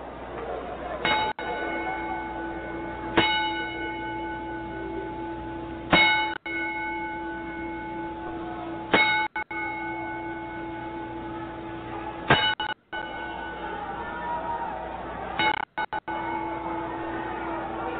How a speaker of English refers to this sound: Ten bell salute and a moment of silence for Howard Finkel, ladies and gentlemen.